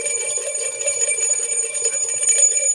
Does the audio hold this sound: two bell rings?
yes